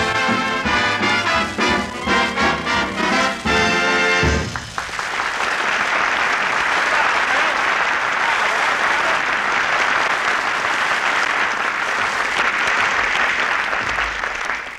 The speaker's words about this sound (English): Isn't Phil a ham? He even puts applause on the record. That was a good number, though.